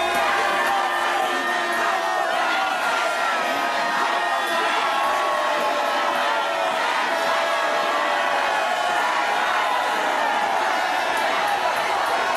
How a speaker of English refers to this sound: That is loud heckling and booing calls of for shame for the people that showed up to this event last night.